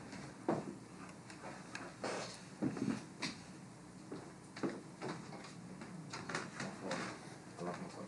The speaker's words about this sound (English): What is somebody at the door? Nah, they. Oh, okay. But yeah, I don't. Oh yeah, somebody's knocking.